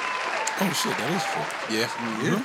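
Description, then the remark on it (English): Steady clapping from a group fills the background, with voices calling out and talking over it throughout; a round of applause for Phoenix Suns players Chris Paul, Devin Booker, DeAndre Ayton and Jay Crowder. “Round of applause for Chris Paul, Devin Booker, DeAndre Ayton, Jay Crowder.”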